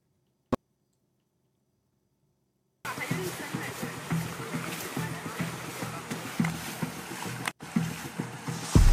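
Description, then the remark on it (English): Steady splashing and trickling of water as clothes soaked by streams along the Darien Gap are wrung out, starting after a sharp click and a few seconds of silence and continuing to the end. “All right, so right now I'm wringing out all my shit.”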